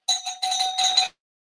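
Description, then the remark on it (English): A doorbell rings loudly on its own, a bright electronic buzz-chime sounding in three quick connected pulses for about a second before cutting off into silence. Someone is at the door of the speaker's home. “Okay, there's somebody at my door.”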